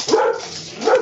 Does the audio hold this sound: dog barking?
yes